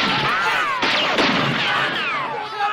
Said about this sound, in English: He shot my arm.